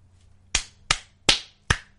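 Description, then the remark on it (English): Four sharp hand claps in a slow, steady rhythm, each a crisp, bright smack that fades quickly, with a faint low hum underneath and no talking. “Is that you applauding?”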